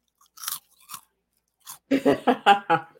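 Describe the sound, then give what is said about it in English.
Crunchy snacks being chewed: a few sharp, crackly bites at first with pauses between, then a quicker run of five loud, rhythmic crunches toward the end. “And I'm eating some snacks right now.”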